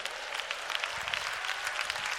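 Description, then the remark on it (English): A crowd claps steadily, a dense, continuous patter of many hands at a fairly even level, with a faint murmur of voices underneath, answering a call to clap their hands if they are willing to serve the Lord. “Am I talking to anybody that would clap their hands and say, I'm willing to serve the Lord?”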